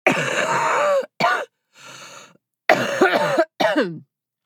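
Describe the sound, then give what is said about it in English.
A loud fit of harsh, throaty coughing in four raspy bursts from a person who is ill and testing positive after a five-day Paxlovid course, with a long groaning first cough and a wheezy breath drawn in partway through. “That is how I sound when I cough.”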